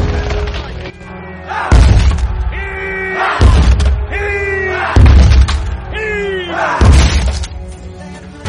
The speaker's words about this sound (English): This is your city Stannis means to sack. That's your gate he's ramming.